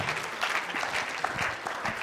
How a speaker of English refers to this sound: Okay. Why don't you guys give these a round of applause, and I'll tell you why we're doing that.